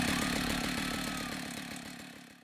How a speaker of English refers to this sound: And she held a chainsaw, which she pulled the cord on it and it roared to life. It was so loud, you couldn't hear my scream.